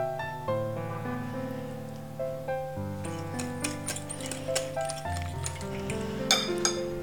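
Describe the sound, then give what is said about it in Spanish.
A utensil stirs fresh baker's yeast into lukewarm water in a bowl, making quick, light clinks and taps that come in irregular bursts, quiet at first and busier later, over steady background music. “En primer lugar, poner el agua tibia en un bol. A continuación, deshacer la levadura en el agua. Deshacer bien.”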